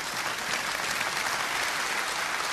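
An audience claps steadily, a dense, continuous patter of many hands at an even level with no voices standing out.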